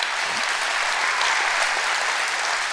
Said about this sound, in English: Come on, clap your hands real good.